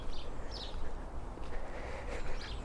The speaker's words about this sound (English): And some sparrows. Yeah, just the sparrows, the house sparrows around the buildings here. They so love being beside humans.